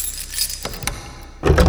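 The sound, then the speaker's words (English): Keys jingle with bright metallic rattling as a woman unlocks a brown, unmarked door at the top of a staircase, then a couple of sharp clicks as the lock is worked, ending in a louder burst of clattering keys and a clunk. No one speaks. “undid the lock, and we followed her in.”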